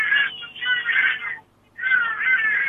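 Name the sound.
birds calling outside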